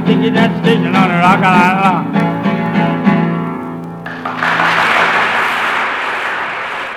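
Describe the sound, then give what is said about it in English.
A song with twangy vocals and guitar ends, then steady audience applause takes over for the last few seconds, a dense, even wash of clapping with no voices. “I think they were applauding your record collection there.”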